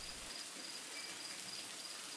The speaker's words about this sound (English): It was really coming down outside today. God, it seemed like it's been raining ever since we found Jesse's apartment empty.